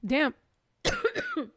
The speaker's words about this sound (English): I was trying not to cough.